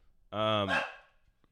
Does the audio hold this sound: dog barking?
yes